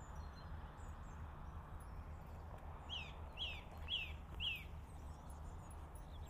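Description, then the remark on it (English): A magpie cackles in the distance, a short run of four harsh, rasping calls over steady outdoor background noise, with no one speaking. “I can hear a magpie in the distance, like, cackling.”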